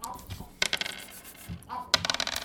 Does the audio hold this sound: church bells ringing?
no